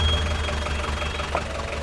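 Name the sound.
car engine idling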